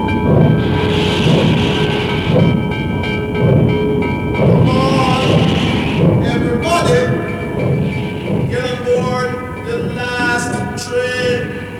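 A train rumbles past with a steady rhythmic clatter of wheels on track, while loud drawn-out horn and whistle blasts sound repeatedly over the chugging.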